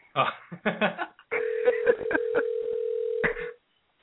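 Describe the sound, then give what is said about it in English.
A steady, unbroken mid-pitched phone dial tone drones for about two seconds after the caller hangs up again, with voices talking over the start and briefly over its end. “He hung up again.”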